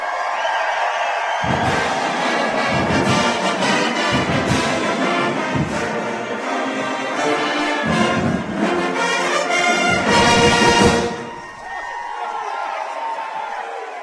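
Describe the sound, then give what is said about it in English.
A large crowd applauds and cheers loudly for about eleven seconds for the 2023 Wildcats team captains and coach on stage, with whoops and shouts rising over dense clapping before it drops off to a softer murmur. “One more round of applause for these guys for 2023, will you?”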